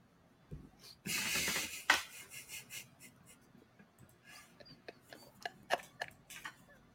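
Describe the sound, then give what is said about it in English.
Slurping while eating: one long, noisy slurp near the start, followed by a scatter of short wet smacks and clicks. Fairly quiet, with no talking. “Turn my mic off so he can get the slurping.”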